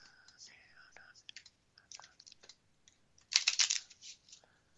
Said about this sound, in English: And to do that, I'm going to shuffle up some playing cards. Okay, getting these shuffled up so we can give you a reading on this.